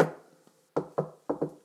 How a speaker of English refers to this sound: Knock if you're with me.